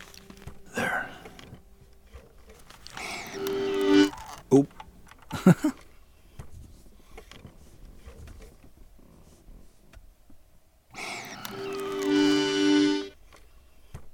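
A few halting, reedy notes from an accordion played by someone who has never played one before, left hand in a leather strap and right hand on the keyboard, separated by long quiet gaps and soft clicks and thumps, ending on a fuller, sustained tone.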